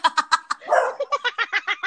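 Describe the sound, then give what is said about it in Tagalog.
A rapid run of about ten sharp, high-pitched dog barks from a sound effect triggered by accidentally pressing a button, loud, with a brief rougher growl-like bark in the middle and no talking. “Napindot ko yung effect ng aso.”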